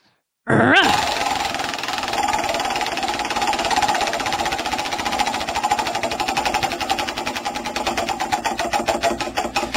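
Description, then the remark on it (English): A prize wheel is spun to pick this week's winner of a bottle opener: a sudden burst of fast, dense clicking from its pointer, a steady loud rattle whose ticks gradually slow and spread apart toward the end. No one speaks. “it's your turn to spin the wheel this week to find out who wins the bottle opener.”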